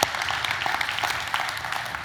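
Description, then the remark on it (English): A crowd applauds steadily, many hands clapping in a dense, even patter of crisp sharp claps that holds at a constant loudness throughout, with no voices heard over it. “I'll clap for that.”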